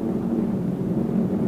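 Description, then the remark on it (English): A steady, low droning rumble of American warplanes flying overhead at the Amstetten train station on 21 March 1945, holding an even loudness throughout with no rise or fade, and no voices. “Charlotte Decock and a few 31,000 look up and watch American planes flying above their heads.”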